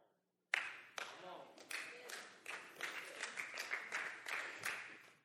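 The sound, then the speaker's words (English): Polite, scattered applause of the sort heard at a golf tournament: a sudden start, then a few hands clapping unevenly for about five seconds, moderately loud. “That's a golf tournament clap right there.”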